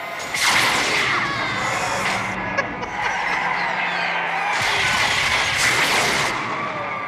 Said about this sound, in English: This is, in fact, the Voyager 5 spacecraft or whatever being shot and screaming.